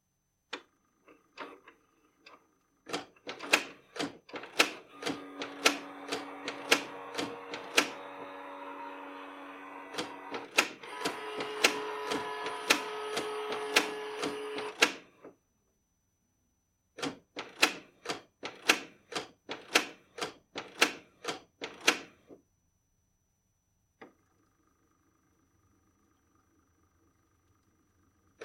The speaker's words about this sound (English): So I have a printer here that I haven't fired up in a long time, and I had to so I could scan in Finn's picture for the cover art. I'm going to play this for you, and tell me that this doesn't sound like some sort of haunted printer.